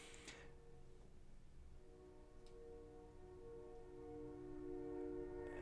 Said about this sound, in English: There's a train going by. I hope you can hear it.